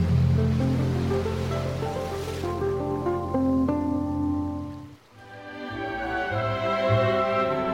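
Ocean surf washes steadily over a soft bed of sustained musical tones, the rushing water fairly loud and continuous, easing briefly before swelling back. No one speaks.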